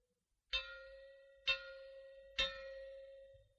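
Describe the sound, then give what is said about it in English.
Three loud metallic gong strikes sounded as a fallout warning, meaning fallout is expected, at roughly one-second intervals, each with a sharp attack and a long shimmering ring that overlaps the next, heard alone with no voices. “Or you may hear three gongs like this.”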